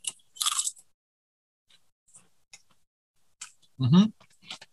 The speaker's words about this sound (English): So here's a little bag crinkle for you. Dipping my hand in the chip bag. Like, let's get a nice little conjoined crunch.